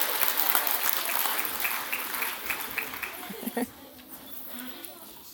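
An audience applauds itself steadily for several seconds with dense clapping, then it quickly dies away into quieter murmur.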